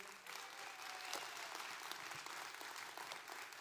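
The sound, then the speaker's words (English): An audience at Freedom Church claps steadily together as a hand clap of praise to God, a dense, continuous patter of many hands that stays fairly even in loudness throughout, with no voices standing out above it. “Now, another hand clap of praise.”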